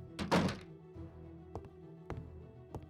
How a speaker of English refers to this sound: Carmion, Iris, keep the door shut.